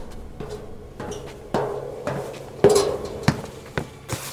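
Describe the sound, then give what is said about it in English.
Footsteps on a boat deck, about seven hard, hollow knocks at an uneven walking pace, with a couple of heavier clunks partway through and no voices. “Footsteps on boat.”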